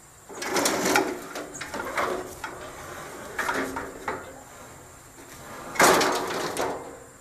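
Lawn chairs are dragged and shifted, with several scraping, clattering bursts at irregular intervals and quieter rustling in between; the last bump is the loudest.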